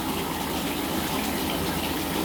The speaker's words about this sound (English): I get some more hot water.